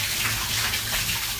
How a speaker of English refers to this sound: So it's not quite like a normal shower, although it's actually got a bit colder again. Just put the head under.